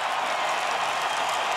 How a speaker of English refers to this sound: Listen to this crowd, 20 seconds in regulation.